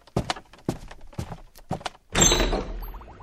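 Several short, hollow thumps like footsteps or handling, then a door swings shut with a loud, heavy thud that rumbles and fades, with no talking.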